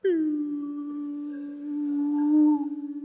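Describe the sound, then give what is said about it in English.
A voice imitates the singing water pipes of an American house built in 1987, which sing when the hot water is shut off: one long, steady, mid-pitched hum, held for about three seconds, swelling slightly near the end before wavering and fading out. “And the pipes do this weird thing where they sing. When you shut off the hot water.”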